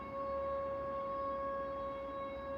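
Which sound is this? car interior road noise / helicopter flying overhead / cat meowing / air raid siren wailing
air raid siren wailing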